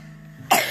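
A child gives a short, sharp cough close by, a raspy burst breaking a brief quiet stretch, with a second push of breath right at the end.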